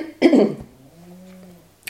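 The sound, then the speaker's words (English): A cat snoring while nested under an Icelandic blanket: a sudden loud, rough grunt bursts out, then a softer, low droning snore hums steadily for about a second before fading. No one speaks. “So hopefully, I mean, if that's coming across an audio, lucky you, you get to hear my cat snoring.”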